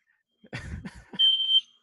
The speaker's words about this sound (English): So while TC's dealing with a smoke alarm